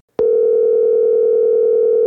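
After a brief silence, a loud, steady electronic ringback tone sounds on a phone line, holding one unbroken buzzing pitch to the end, with no voices.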